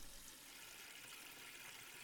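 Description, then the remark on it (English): Purple-coloured water runs steadily from a kitchen tap into a plastic basin, a continuous, even rushing hiss that holds the same level throughout, with no voices. “When purple water poured from the kitchen tap, Janie knew the end of the world had come.”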